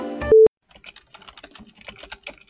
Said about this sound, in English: It's getting all the angry typing